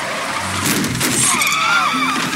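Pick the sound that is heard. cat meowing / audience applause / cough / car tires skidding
car tires skidding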